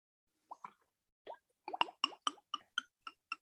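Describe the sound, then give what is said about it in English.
Liquid being poured from a bottle, glugging in a quick series of hollow, bubbly plops that start sparse and settle into a steady rhythm, clear with no voices. “Oh, I thought you were hitting the gravity bong, but it sounds like you're pouring something.”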